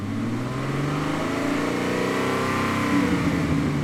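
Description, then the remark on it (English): Corey Bradford's Camaro engine roars steadily as it gets closer and stops at the side of the road, a deep rumbling growl with rising and shifting revs and no voices. “The sound of Corey Bradford's Camaro roared as it got closer.”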